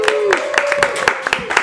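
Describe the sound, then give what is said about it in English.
A small studio audience at a live recording claps in a steady, fairly quick rhythm, each clap crisp and loud, with a sustained whooping voice carried over the start of the applause. “Give yourself a round of applause for sticking around for a live podcast recording.”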